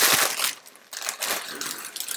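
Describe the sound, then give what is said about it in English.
Cheerios cereal pours into a bowl with a dense, crunchy rattling clatter, loud, pausing briefly midway before the pouring resumes. “Should we put this on pause while we pour those Cheerios?”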